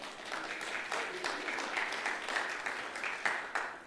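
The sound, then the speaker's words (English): A church audience applauding themselves: many hands clapping in a dense, steady crackle that holds at an even, moderately loud level for a few seconds with no clear individual beats. “Because one day those people, you should clap at yourself, yeah?”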